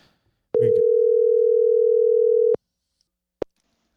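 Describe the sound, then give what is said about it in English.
A single steady ringback tone from an outgoing phone call to the caller's wife sounds loud and clear for about two seconds, then cuts to silence, with a short click just before and another soft click afterward. “We're going to call my wife. Let's get her on the phone.”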